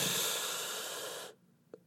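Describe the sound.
A voice imitates heavy, slow breathing: one long, loud, airy exhale lasting over a second, then near silence broken by a faint click.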